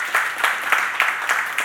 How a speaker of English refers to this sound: So we clap because we want that.